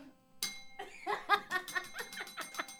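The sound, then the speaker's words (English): A bright bell chime rings out suddenly and keeps ringing in the background, while a burst of rhythmic laughter rolls over it for a few seconds. “Ding, ding, ding. Let me ring the bell.”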